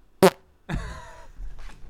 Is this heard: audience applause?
no